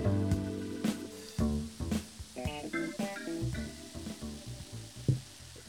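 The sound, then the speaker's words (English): A bubbling, fizzing special sound effect meant as the effervescence of a merman seeping into pores: a continuous crackly effervescent hiss layered with shifting tonal, almost musical notes and a few sharper pops, fairly quiet and without any voices. “Something's bubbling. Yes. Got some special effects happening today.”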